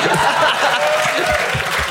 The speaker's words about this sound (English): Round of applause, yeah.